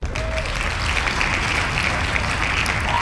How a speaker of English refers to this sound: And you gotta wait till the hand clap stops. Then that's when you chime in.